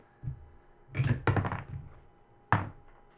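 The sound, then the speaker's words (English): A die clatters across a hard tabletop in a burst of quick, sharp clicks and rattles, pauses, then lands with one last hard knock. No one speaks. “Let's roll the dice, see what's up next.”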